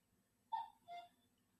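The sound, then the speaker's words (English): A cuckoo clock in an antique shop sounds a single soft two-note call, the second note slightly lower, heard alone against a quiet background hum with no talking. “Can you hear that cuckoo clock?”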